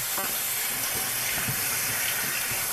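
Half a cup of warm regular (unfiltered) tap water pours steadily into a mixing bowl, a continuous splashing and trickling stream lasting a few seconds, with no talking.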